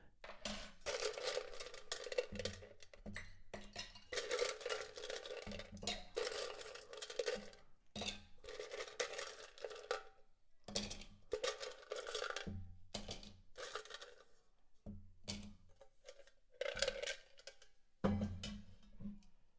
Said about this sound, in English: We're going to go ahead and add ice into our mixing glass here.